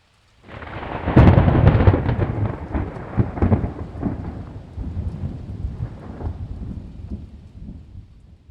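A loud thunderclap bursts in and rumbles on, rolling and crackling as it slowly fades, with steady rain hissing underneath throughout.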